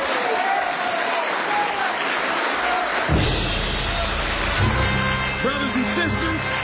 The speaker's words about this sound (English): Well, let us hear from our minister, Minister Malcolm X. Let us bring him on with a round of applause.